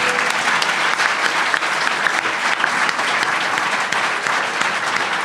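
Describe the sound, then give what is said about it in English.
A live audience at a stage show claps steadily for a volunteer called up to the stage, a dense, continuous wash of applause at a fairly loud level for several seconds, with no voices standing out. “Round of applause for our dice.”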